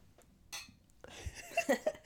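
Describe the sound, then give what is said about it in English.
Glasses clink together in a toast, two or three bright, short ringing taps in quick succession, following a brief rustle and soft breathy sounds. “Cheers.”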